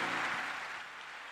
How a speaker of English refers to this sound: Let's welcome him with a clap again. In church we clap, so keep clapping. Yeah, keep clapping. There's nothing wrong with your hands. Keep clapping.